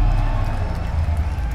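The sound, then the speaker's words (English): A loud, steady roar of a large stadium crowd cheering at full force at the finish of a 1500 m running race, dense and continuous throughout with no pauses and no distinct voices standing out. “I know it's all over when the noise of the crowd resumes in full force.”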